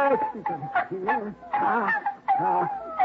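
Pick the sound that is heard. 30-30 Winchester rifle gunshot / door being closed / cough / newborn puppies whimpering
newborn puppies whimpering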